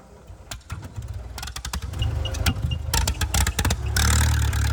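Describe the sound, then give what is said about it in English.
A tractor's heavy engine rumbles low as the tractor is pulled by a chain and the clutch is popped; irregular clanking and sputtering bursts build, then the motor catches and roars into a loud, steady rev near the end. No one speaks. “And so hooked up a chain to my tractor, begins to pull the tractor out and pop the clutch.”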